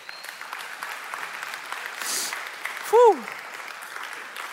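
An audience applauds steadily throughout, a dense crackle of many hands clapping, with one brief rising-and-falling whoop cutting through the applause near the end.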